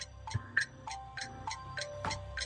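A 60-second game-show countdown clock for an Olympics trivia round ticks steadily, with sharp regular ticks about three per second layered with faint electronic tones. No one speaks over it.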